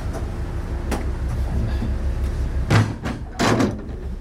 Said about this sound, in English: Now I'm going through the watertight door to the outside. It's a big, heavy door.